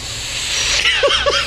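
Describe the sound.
A person's voice imitates a cat hissing: a steady, airy hiss that swells, then two short, rising-and-falling vocal whines break through near the end, loud and without any talking.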